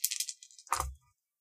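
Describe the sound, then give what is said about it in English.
Dice rattle briskly in a cupped hand for a moment, then tumble out with a single clattering thud onto a tabletop for a resources roll, fairly quiet, with no voices. “Give me a resources roll.”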